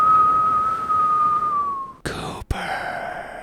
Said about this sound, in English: Coopers, they'll make you whistle as good as I do.